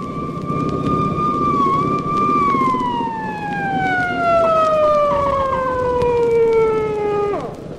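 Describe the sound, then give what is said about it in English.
A police car siren wails loudly, its steady tone gliding gradually lower as if the vehicle is passing by, over a rumble of engine and road noise. “Here comes a cop car, coming after me.”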